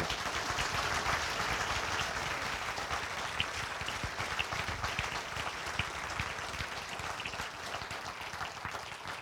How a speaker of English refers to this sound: So please, a big round of applause for Murray Pittock.